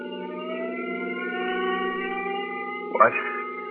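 An ambulance siren drones on in a steady, unbroken tone throughout, fairly loud, as the ambulance rushes a stabbed man to the hospital, with a brief knock or bump near the end.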